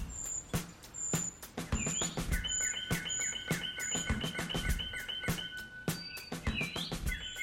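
Small birds chirp and trill continuously in high, thin repeated notes, with several calls overlapping against a background of faint clicks and rustling.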